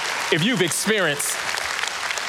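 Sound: audience clapping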